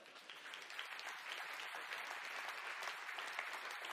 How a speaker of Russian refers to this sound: Давайте Богу дадим аплодисменты. Аллилуйя!